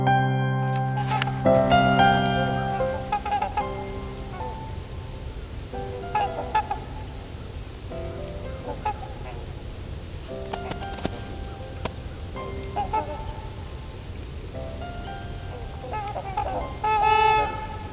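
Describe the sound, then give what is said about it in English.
Trumpeter swans call repeatedly in a chorus of nasal, horn-like honks, some loud and others fainter, overlapping at irregular intervals over a steady low background rumble. “listening to some trumpeter swans. A lot of crows around me too.”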